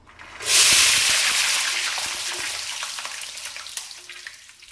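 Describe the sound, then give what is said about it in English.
Food hits boiling oil with a sudden loud hiss that swells into a steady, crackling sizzle, with scattered pops and spits as it slowly settles, with no voices. “There's no room in my boiling oil.”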